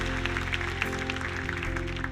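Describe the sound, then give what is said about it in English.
An audience claps steadily as a clap offering to God for Accomplish. The applause is a dense wash of many hands at an even loudness, with sustained low musical tones holding underneath throughout. “Come on, once again, let's give God a clap offering for Accomplish.”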